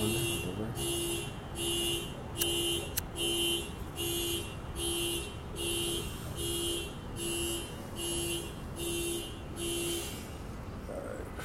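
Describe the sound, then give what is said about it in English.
A car alarm blares outdoors with a steady, rapid on-off honking pattern, about a dozen evenly spaced pulses repeating at a fixed rhythm over low traffic rumble, moderately loud. “sorry about the car.”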